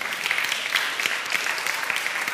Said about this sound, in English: all of y'all should have been clapping because this is amazing.